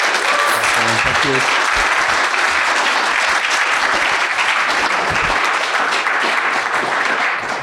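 Sustained audience applause, a dense steady wash of many hands clapping that stays loud throughout, with a few faint voices briefly mixed in near the start.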